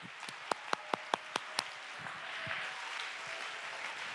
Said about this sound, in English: Okay, everybody stop. Everybody clap your hands and give him praise. Come on, everybody clap. Everybody give him praise.